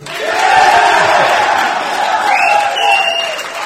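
crowd, audience cheering

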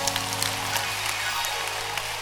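crowd, audience clapping hands

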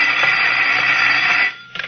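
signal or alarm, telephone ringing

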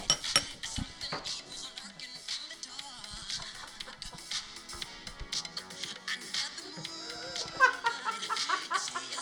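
household object, glasses clinking

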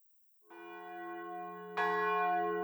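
signal or alarm, church bells ringing

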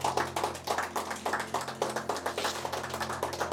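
crowd, audience clapping hands

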